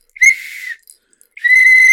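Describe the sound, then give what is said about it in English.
Two loud, sharp blasts from a whistle put in the mouth and blown: a shrill, steady tone around half a second long, a brief pause, then a second longer blast that continues to the end. “Can I just say, you put that whistle in your mouth and blew it instantly without even checking if it had been up an old man's arse before it went in the box.”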